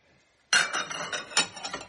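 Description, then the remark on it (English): Two cups (519 grams) of water pour steadily into a mixing bowl of flour for a batter, a bright splashing rush that starts abruptly after a brief quiet and keeps going, with small surges in the flow. “So I'm pouring that in.”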